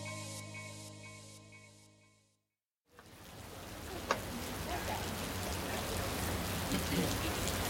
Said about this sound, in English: It was a rainy and seasonably cool evening in Rome